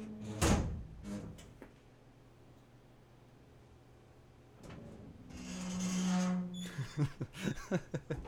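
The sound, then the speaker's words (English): A heavy metal vault door closing: an opening clang, a low mechanical hum, then a long grinding rumble followed by a series of rapid clanks and thuds as it locks shut. “Close the vault door.”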